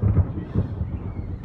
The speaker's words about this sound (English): The thunder is telling me I'll see you later.